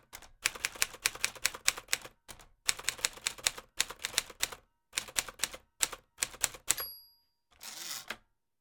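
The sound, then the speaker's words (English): Rapid clacking of a mechanical typewriter, keys striking in quick irregular bursts with short pauses, ending with a bell ding and the zip of the carriage being returned. Fairly loud, no voices. “I gave him a typewriter. You know what a typewriter is, my listeners?”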